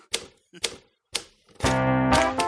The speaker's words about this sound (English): And now we're all writing. Now I'm typing.